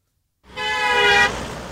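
A single sustained car horn honk blares loudly for under a second, its bright tone cutting off into lingering traffic rumble.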